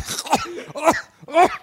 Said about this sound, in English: Everybody have a coughing fit.